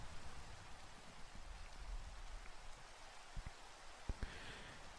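Steady rain pours down in a dense, even hiss, with a few sharper drops and taps standing out now and then. No voices are heard.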